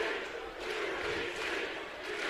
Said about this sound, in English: and nothing gets a crowd going like a big kick. Yeah, the crowd's got the UBC chant going right now. They're brought back to life.